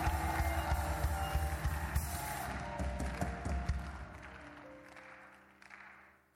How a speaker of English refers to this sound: Come on, clap your hands and scream it and praise God.